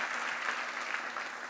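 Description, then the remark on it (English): A crowd gives one more hand clap for the healer in the morning, a steady, dense wash of many hands applauding at an even level for the whole stretch, with no voices standing out. “Come on, let's give the healer one more hand clap this morning.”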